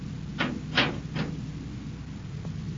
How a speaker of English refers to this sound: Shut the door.